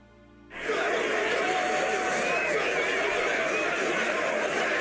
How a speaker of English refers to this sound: I don't like it. Okay, and why don't you like it? Sounds like a big crowd. Okay. Claustrophobic. Yeah. The people are pressing in on me. I don't like that at all.